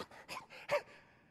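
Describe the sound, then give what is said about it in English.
A voice imitates a man desperately gasping for air as he sinks in water, like a person drowning: four quick, ragged, breathy gasps, the last one the sharpest, then quiet. “And he's there just barely able to gasp for air.”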